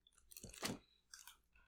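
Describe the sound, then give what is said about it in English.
Chewing of milk chocolate, a few soft crunchy bites and mouth sounds over under two seconds, fairly quiet and intimate, with no talking. “It's just kind of like advent calendar chocolate.”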